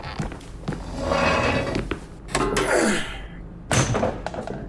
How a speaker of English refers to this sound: Do you have anything you can throw? Like what? A piece of furniture? Oh, yeah. There's a metal chair. Throw it.